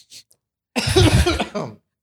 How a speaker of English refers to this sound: No one can hear you. You're wait. Get back over here. Everyone wants to hear you blow your nose, especially during COVID. That's disgusting.